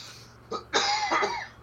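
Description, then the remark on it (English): A short, sharp cough followed by a longer, raspy burst of coughing from a person with a cold, fairly loud, with no talking around it. “I've got a cold on its way out. Yeah, I'll try to edit some of the coughs out.”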